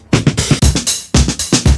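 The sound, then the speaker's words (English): A short, loud drum loop from a snare drum recorded with its microphone plus some overhead mic, with a little distortion added and slowed down: punchy low thumps and crashing, distorted snare hits in a steady repeating groove, the roomy overhead sound smearing each hit. No one speaks. “If you also add in some of the overhead mic, add a little bit of distortion, you get what Shep used, which sounds like this.”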